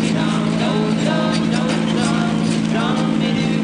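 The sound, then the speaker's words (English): A car engine runs loud with a steady, throaty drone and a constant low hum as the driver presses the heavy clutch, holding its pitch for a few seconds while faint voices murmur beneath it. “This car can get away from”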